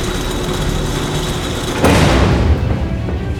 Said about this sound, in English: What's that noise? I hear it too. Sounds like it's coming from one of the cargo bays in the back there. Barrington, that cargo bay door is opening. Something is stepping out.